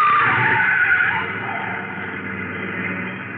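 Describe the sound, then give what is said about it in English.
Tires skid and squeal loudly as a big baby blue convertible speeds past, trying to run down people on foot, the high screech sliding in pitch before easing into a sustained engine roar. No one speaks. “And that car was trying to run us down.”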